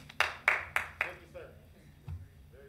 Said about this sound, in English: Sir, the council rules prohibit such applause and cheering during public comment. So please restrain yourself.